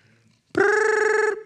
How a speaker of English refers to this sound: You're like, I'm not going to answer that phone. Five rings later.